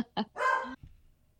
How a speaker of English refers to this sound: as some of you probably heard in the last 15, 20 seconds, Luca, my dog, was barking